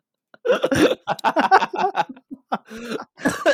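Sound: cough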